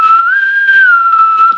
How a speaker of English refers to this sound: That's the whistle that you do. Sounds like the intro to Jeopardy.